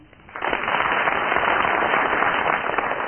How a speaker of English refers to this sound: I'm going to get the studio audience here, and those of you listening at home, to judge who so far has tied the best tie. They're well on First the way. First of all, will you give your applause or otherwise for Barry Cryer?